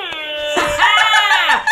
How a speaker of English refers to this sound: it's an air horn button. Oh my gosh, you guys. It is, and it's so cartoony looking. It's a big button you push like on a game show that makes an air horn noise.